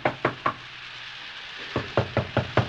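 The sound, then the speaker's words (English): Someone knocks on a locked door: three firm raps, a pause of about a second, then a quicker run of six more, clear with no talking. “open the door. Oh, hello. Why did you lock the door?”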